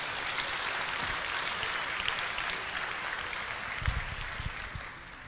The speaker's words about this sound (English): Clap your hands right there. Good place to clap.